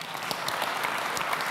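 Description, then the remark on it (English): Steady audience applause as a speaker is welcomed onto the stage, filling the space with a dense wash of many hands clapping at once, moderately loud and continuous with scattered sharper claps standing out, and no one talking over it. “Let's give Greg a big round of applause.”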